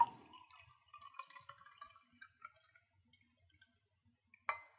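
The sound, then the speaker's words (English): Liquid pours from a jar labeled Jesus in a short, gurgling stream that tapers into a few scattered drips, ending with a sharp clink of glass. Fairly quiet, with no talking. “And so I've got a jar here labeled Jesus, and I'm going to pour Jesus into you.”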